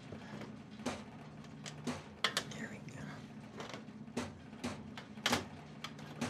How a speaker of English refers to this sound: What is that? Yeah, the air conditioner's, I don't know, it's making noise up there.